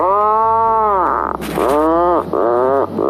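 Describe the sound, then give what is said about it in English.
A puffin call played by an Alexa animal sounds feature: a series of loud, groaning calls, about three drawn-out moaning notes in quick succession with a brief rough burst between them, and no talking. “Get ready for a puffin wow, sound.”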